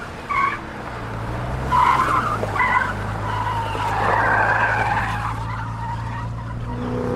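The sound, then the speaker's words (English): A car engine drones steadily while tires screech in short bursts and a longer squealing skid as the car swerves sharply along streets, dodging people, cars and debris; no voices. “drove crazily along the streets, dodging and weaving people, cars, and debris.”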